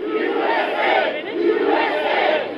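Thousands of Californians at Liberty Fest outside the state capitol chant "USA" in unison, a rhythmic two-part shout repeating in loud swells, with a dense roar of many voices underneath.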